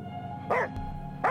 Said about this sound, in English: Coco's barks are getting more and more intense. She is snarling, teeth bared at Marcus. She is fighting back from my grasp on her collar.